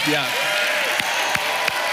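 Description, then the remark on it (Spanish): An audience shouts and cheers a cry of jubilation to the Lord, a loud, dense roar of many voices with a few raised cries early on and three sharp claps or thumps cutting through near the end. “Vamos a gritar, a hacer un grito de júbilo al Señor por lo que Él ha hecho y lo que Él va a hacer y lo que está a punto de hacer.”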